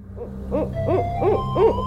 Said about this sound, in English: We're listening to the sounds of a barred owl. Over the past 40 years, these nocturnal predators have spread rapidly throughout the western United States.